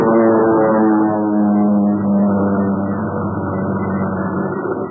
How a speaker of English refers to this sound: Well, the plane's coming in again, Pat. Let's get down here and jump this thing.